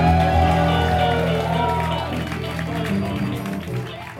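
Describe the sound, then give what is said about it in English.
An audience bursts into loud, sustained applause for the live improv band, dense clapping with cheering voices mixed in, holding steady for about four seconds before tapering slightly. “A big round of applause for our band, …!”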